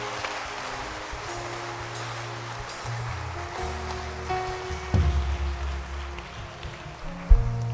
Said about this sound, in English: Clap your hands. Wow.